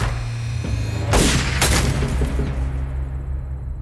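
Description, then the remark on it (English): Machine guns firing from a ditch about 20 meters away, ambushing Bonnie and Clyde's car at night, erupt in a couple of sharp, loud bursts over a deep, steady rumble, with the crackle trailing off into a low drone. No one speaks. “Machine guns blast from the ditch.”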